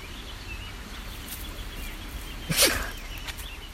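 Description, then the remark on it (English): An animal named Ernest, digging in dirt near a creek, gives a single sharp, breathy sneeze from inhaling dirt partway through, over a steady low rumble with faint scuffling. No one speaks. “Sneezing from the inhalation of dirt.”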